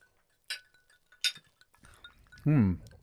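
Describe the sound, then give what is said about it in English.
Two bright glass clinks ring out about a second apart as glasses are touched together in a toast at a bourbon tasting, followed by a short voiced murmur. “All right, everyone, shall we? Cheers. Salud. Clink. Clink.”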